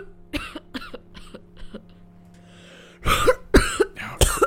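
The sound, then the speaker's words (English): A woman coughs repeatedly, first in a series of smaller hacking bursts, then three loud, heavy, harsh coughs, with a low steady hum in the background. “coughed like she was about to lose a lung.”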